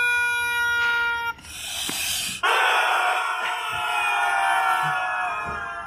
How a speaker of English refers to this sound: For me, it's the Duck Army, which, fun fact, actually originates on Instagram. For those who haven't seen it, involves somebody pressing down on one of those rubber duck things, and then they press down on a whole box full of them.